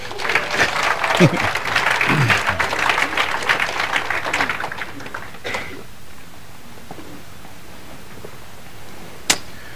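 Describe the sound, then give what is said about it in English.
People applauding warmly for the worship team for several seconds, dense overlapping claps that fade out around the midpoint, leaving a quiet background and a single sharp knock near the end. “Do you guys appreciate your worship team here? Please clap.”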